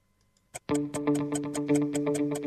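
A clock ticks quickly and steadily, loud, over a sustained low humming tone that begins with a sharp onset after a brief quiet lead-in. No one speaks.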